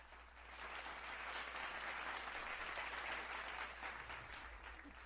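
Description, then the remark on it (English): A crowd applauds steadily, a dense wash of many hands clapping that swells quickly and holds at an even level for several seconds, with no voices standing out. “A hearty round of applause from all the people in our audience here.”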